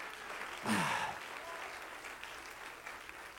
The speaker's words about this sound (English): Come on, clap your hand to the Lord in Jesus' name.